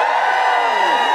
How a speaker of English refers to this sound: Now, obviously some feminists do. Just give us a cheer if you're a feminist who does care about football.